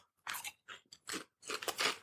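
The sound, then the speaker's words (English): Crisp crunching as a chip is bitten and chewed, several sharp bursts in quick succession with brief pauses between them, no talking. “Oh, wait, let's try the chip.”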